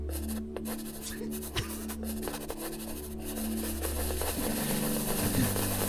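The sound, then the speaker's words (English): A knife slices through lemons in scratchy, rasping strokes with a few sharper taps against a board, all over a steady low mechanical hum. No one speaks. “Hey, why don't you get a nice slice down those lemons? Let's hear it.”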